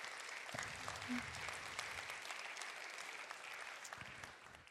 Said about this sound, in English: And while all the while, praise the Lord, you can clap.